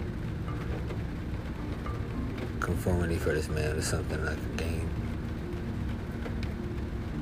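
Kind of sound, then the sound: nature, rain falling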